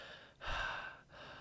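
Heavy, strained breathing close to the mic: a loud rasping inhale-exhale with gasps, briefly pausing twice, sounding labored and effortful with no speech.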